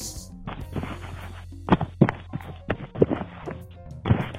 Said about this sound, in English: Use your phone. Slap your ass with your phone. That's it. Let me hear that.